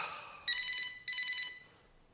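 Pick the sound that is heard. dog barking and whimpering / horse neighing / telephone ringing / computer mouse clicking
telephone ringing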